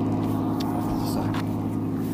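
A truck engine roars steadily as it drives up a road on a freezing, sunny morning, a loud, continuous low rumble with a harsh mechanical whine.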